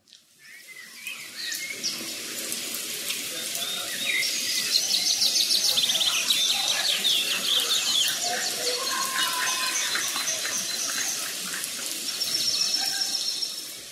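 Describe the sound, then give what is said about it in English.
Several birds chirp and trill busily and continuously over a steady, soft patter of falling rain; the calls overlap at moderate volume with no one talking. “They keep singing, even in the time of raining.”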